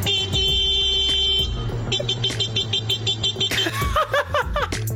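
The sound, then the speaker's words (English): A man vocally imitates a car horn, starting with a sustained honk-like tone, then a run of quick, wavering beeps, loud, with chuckling sounds mixed in. “The noise you're going to hear sounds like a man being interrupted by a car. He isn't being interrupted by the car. He is making the car sound.”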